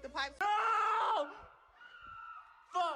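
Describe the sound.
Loud, strained high-pitched screaming from a few voices, one long sustained shriek followed by quieter wavering cries and another sharp burst at the end.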